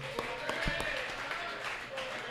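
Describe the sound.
An audience applauds with a steady, dense patter of clapping lasting a couple of seconds, a few sharper individual claps standing out early on, over a soft murmur of crowd voices.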